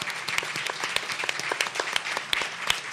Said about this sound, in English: So why don't you give them all a round of applause and thank them for being here.